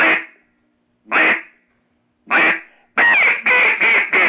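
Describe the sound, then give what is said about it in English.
Loud duck-call quacks: three single honks spaced about a second apart, then a quick run of four, the notes deliberately pushed too hard so they turn thin and squeaky, demonstrating a mistake judges penalize in duck-calling contests. “if you hit that too hard and you squeak it, the judge is going to knock off”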